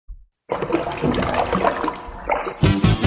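Bath water rushes and splashes loudly for a few seconds, a continuous churning slosh that surges again near the end, with no voices.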